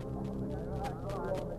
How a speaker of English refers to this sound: A moment later, I saw a rush from the house and a carriage with those high-strung horses dashing down the drive.